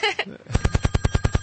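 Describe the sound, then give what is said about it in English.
A telephone rings with an incoming call: a loud, rapid metallic bell trill of about ten evenly spaced strikes, preceded by a brief higher electronic tone. “Oh, we have a call.”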